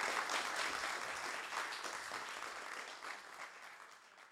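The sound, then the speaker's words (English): An audience at an author talk at the Midtown Scholar Bookstore claps for the speaker in a sustained, dense round of applause, a steady crackling wash of many hands that holds fairly loud then gradually tapers off. “Can we get one last round of applause for our speaker?”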